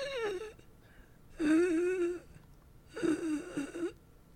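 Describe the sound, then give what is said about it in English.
A voice imitates faint, wheezing breaths: three drawn-out, whimpering exhales with short pauses between them, soft. “as if someone is faintly breathing.”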